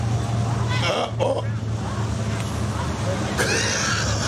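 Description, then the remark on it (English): Cars drive steadily past in cross traffic, a continuous roar of road noise with a low engine rumble and brief whooshes, while indistinct voices murmur underneath. “You know, the best part about this video is the drivers just are not giving a shit and they're just keep going. Yeah, that's the cross traffic.”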